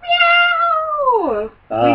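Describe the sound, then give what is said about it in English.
A cat lets out a long, drawn-out meow that slides downward in pitch, fairly loud, then begins a second meow just as the sound cuts off. “We have both podcats here, Caster Troy and Pickleless Cage, here for their input”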